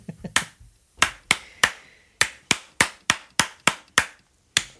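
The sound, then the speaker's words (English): One person claps alone, a dozen or so sharp, crisp slaps in a loose, slightly uneven rhythm with brief pauses, and no voices at all. “Like a brick, my only applauder.”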